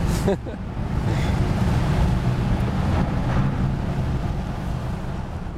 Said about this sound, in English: Yeah, here we go. Getting off the ferry.